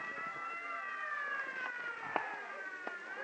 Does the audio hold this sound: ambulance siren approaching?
yes